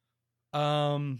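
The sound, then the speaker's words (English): A single drawn-out voiced yawn, rising quickly then sustaining a steady tone for under a second before trailing off, with no talk around it. “Oh, you caught me in a yawn.”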